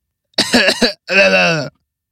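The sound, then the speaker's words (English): A close, loud cough: a choppy, rasping burst followed by a longer voiced, throaty exhale, then silence. No other talking is heard. “Did you hear me cough?”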